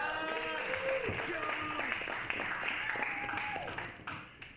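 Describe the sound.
An audience at a comedy show applauds steadily throughout as a comedian ends his set, a dense, loud wash of clapping mixed with scattered cheers and shouting voices, tapering off slightly at the end.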